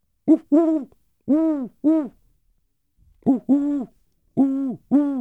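An owl hoots in two rhythmic series of four rich, rounded calls separated by a short pause, clear with no talking.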